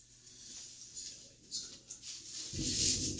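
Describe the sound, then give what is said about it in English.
Soft hiss and light patter fill the first seconds, then a deep, low rumble of thunder swells in and grows louder toward the end. “That's thunder that you're hearing, ladies and gentlemen.”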